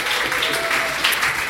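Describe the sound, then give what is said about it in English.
Audience applause at a live show: a dense, steady wash of many hands clapping at an even loudness throughout the brief moment, with no clear speech over it. “Yay, round of applause for you guys.”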